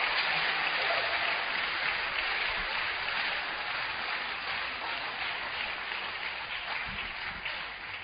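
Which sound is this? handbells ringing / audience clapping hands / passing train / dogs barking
audience clapping hands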